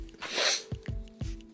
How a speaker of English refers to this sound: But I feel a sneeze coming on.